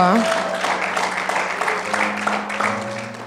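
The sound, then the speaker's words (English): A crowd claps in a steady, dense round of applause lasting a few seconds, with a soft sustained keyboard tone held underneath. “And I just want to give a round of applause for anyone who was their first time or who did it again.”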